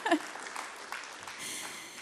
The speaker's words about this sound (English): you can give God a round of applause for that, because it's no small thing.